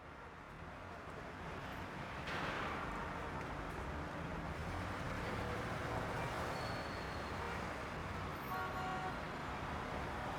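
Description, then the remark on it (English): Steady, dense road traffic on Tylersville Road rumbles and hisses throughout, with passing vehicles swelling the noise, and a brief car horn toot sounds near the end. “The traffic on Tylersville Road is always worse on Wednesdays.”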